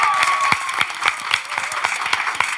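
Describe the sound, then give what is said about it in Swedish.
An audience applauds steadily, many hands clapping together in a dense, continuous patter with a few sharper individual claps standing out, fairly loud, with no talking over it. “En applåd!”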